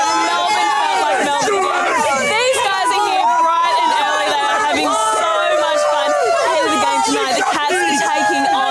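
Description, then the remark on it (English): A large crowd of more than 70,000 Aussie footy fans packed into a stadium cheers and shouts continuously behind a live Today Show TV cross, with many overlapping voices, whoops and yells forming a loud, steady roar throughout. “one of the worst live crosses of the last couple of months from the Today Show when they decided to do a live piece of camera with cheering footy fans in the background.”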